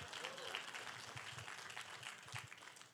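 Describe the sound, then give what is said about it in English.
A crowd applauds with steady, dense clapping that holds at an even, moderate level for the whole stretch, with faint murmuring mixed into the bright, crackling texture. “Oh, my claps are going to get low.”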